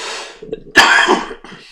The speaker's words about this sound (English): Sorry for coughing on your face. Sorry for coughing in your face like that, but I'm gonna do it anyway.